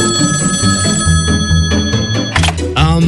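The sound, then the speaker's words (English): A telephone rings with a bright, continuous electronic trill that stays loud across the whole moment, while muffled voices or movement murmur underneath. “That's the spirit phone. Usually I call her. What's going on right now?”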